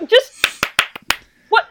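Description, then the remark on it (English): Four sharp hand claps in an uneven rhythm, crisp and fairly loud, with a brief vocal sound just before them and another shortly after. “What's the problem with clapping?”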